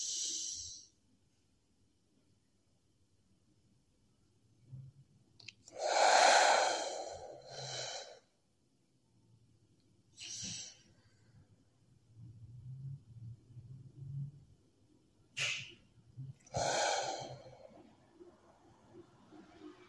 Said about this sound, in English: Continue this breath by yourselves. As you breathe out, push all of the air out of your lungs. It's quite a rush of air because of the difference between in-breath and out-breath.